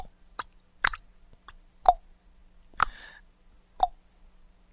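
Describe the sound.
A voice imitates the clock sounds of a song with a series of sharp mouth clicks and tongue pops, about seven hollow, knocking clicks in a loose, syncopated rhythm, some slightly pitched and resonant, with no talking.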